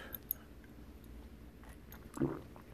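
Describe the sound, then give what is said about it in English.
Someone sips water: a few faint wet mouth clicks, then a soft, brief gulp near the end, all quiet with no talking. “Sip of this water.”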